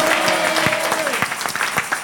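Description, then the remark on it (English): A church audience applauds steadily, with many hands clapping in a dense, sustained patter, joined briefly by a sustained tone from an organ or keyboard. “All those who are clapping, I see the Lord multiplying you.”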